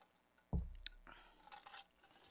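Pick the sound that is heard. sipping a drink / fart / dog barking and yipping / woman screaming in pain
sipping a drink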